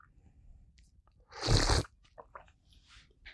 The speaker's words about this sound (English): That was such an ugly slurp. Let me redeem myself. It's harder than it seems, little bunny. It's not easy to slurp some tea.